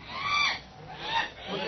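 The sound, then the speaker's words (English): Harsh, squawking cries of a white albatross as it is shot with a gun, three strained bursts in quick succession, loud with a rough, honking quality. “I killed the albatross.”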